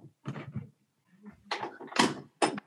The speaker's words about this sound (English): Next door to me in my cottage, there's lots of men smoking cigars and drinking wine, and they're getting a bit noisy. So I'm just going to knock on the door.